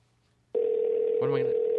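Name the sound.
phone call ringing tone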